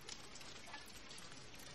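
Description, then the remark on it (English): Steady rain falls in a dense, even hiss of countless drops pattering on a surface, soft and continuous with no voices or music over it. “And then the credits have no music, and it's just rain, ending the movie on a real spine-chilling note.”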